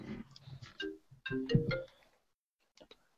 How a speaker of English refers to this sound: What is that? I don't even know. It was someone's ringtone. Was it my son? Nope. I could hear it going off in the background